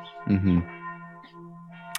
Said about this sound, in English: Every day at 11:30, the bells go nuts for like 5 minutes and we still have no idea why.